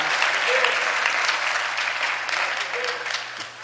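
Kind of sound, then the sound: crowd, audience clapping hands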